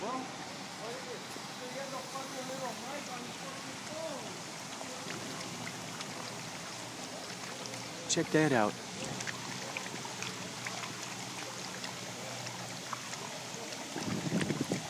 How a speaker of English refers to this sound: I'm gonna get a sound of these awesome fountains bubbling over here. There's a really nice sound to these things.